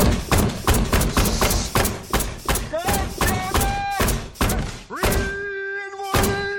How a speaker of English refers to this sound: Stop the fucking hammer! I got a kid over here, okay?